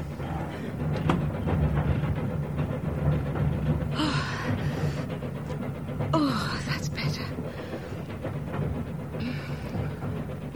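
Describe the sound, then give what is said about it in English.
A train that has left Victoria rolls steadily along the rails with a continuous low, rattling rumble, while a few short breathy gasps from someone waking from a horrible dream rise briefly over it near the middle and end. “It's as if the whole train's gone to sleep.”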